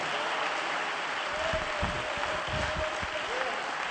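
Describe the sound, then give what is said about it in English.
An audience claps their hands steadily unto the Lord, a dense wash of applause with a few sharper, louder claps standing out, while faint voices murmur underneath. “Oh, somebody ought to clap their hands unto the Lord.”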